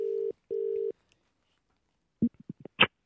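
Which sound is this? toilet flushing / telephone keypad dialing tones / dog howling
telephone keypad dialing tones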